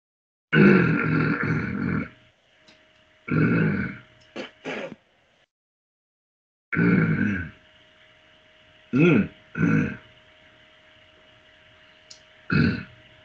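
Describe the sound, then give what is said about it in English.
A man clears his throat in several rough, gravelly bursts, a long hawking rasp followed by shorter grunting snorts, spaced out with silences between them, as he does retronasal tasting while holding tequila on his palate. “When you hear me clearing my throat, folks, that's just me doing some retronasal.”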